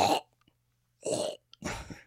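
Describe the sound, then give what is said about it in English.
A person vocally imitates a cat hacking up a hairball: three harsh, gagging bursts, fairly loud, separated by short silences. “that's a cat hairball.”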